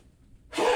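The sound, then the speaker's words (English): A single sudden, explosive sneeze bursts out after a moment of near silence, loud and breathy, cut off at the end. “Okay, so, I can't stop sneezing.”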